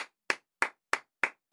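Two people clapping their hands in a steady, even rhythm, with about six sharp, crisp claps spaced evenly apart and no voices, just the bright slaps with short silences between them.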